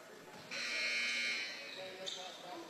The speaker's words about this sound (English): Buzzer sounds.